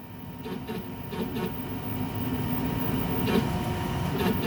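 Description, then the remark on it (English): A 3D printer in a crew habitat workspace, used to make parts for equipment, runs with a steady mechanical hum and rumble. Short whirring bursts break in every second or so as its motors shift. It is moderately loud, with no voices. “All over the habitat, the crew hears a steady stream of machine noises, like this sound of a 3D printer in action, which they can use to make parts for their equipment.”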